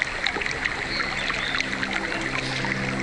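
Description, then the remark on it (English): River water flows steadily, a constant rushing wash with small bubbling splashes throughout and a faint low hum underneath. “Wow, well, here, let's just go over here near this part of the river, because this is a really nice area that I really like.”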